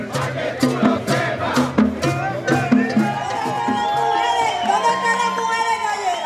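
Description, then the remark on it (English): A large protest crowd in Puerto Rico shouts together in rhythmic bursts, voices rising into sustained cheering and whoops, loud, with a steady din of many people throughout. “Throughout the afternoon, politicians from across the island lined up to address the crowd.”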